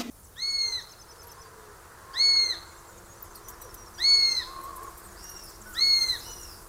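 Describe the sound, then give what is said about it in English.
A sparrowhawk gives four shrill, drawn-out calls, evenly spaced about two seconds apart, clear against a quiet outdoor background with no talking. “It's increasingly becoming a garden bird, the sparrowhawk.”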